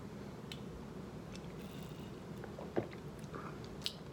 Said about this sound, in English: Oh, let me sip this coffee real quick.